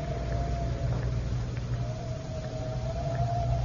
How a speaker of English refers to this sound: As our story continues today, we find Lois and Jimmy visiting the Tower of London. It is 4 o'clock of a windy afternoon, shortly before closing time.